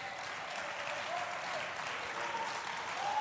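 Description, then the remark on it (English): A group of girls clapping their hands in a dense, steady patter of overlapping claps, fairly loud and continuous, with no clear individual beats standing out. “The girls are clapping, don't mind them.”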